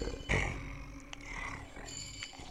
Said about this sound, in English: The grumbling sounds continue. It seems that they're eating.